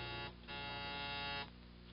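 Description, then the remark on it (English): A harsh electric doorbell buzzer at Ray's apartment, pushed at 6:30, sounds in two presses, a short burst and then a longer steady buzz, loud and raspy, then fades to a lower hum. No one speaks. “It was 6:30 on the nose when I pushed the doorbell.”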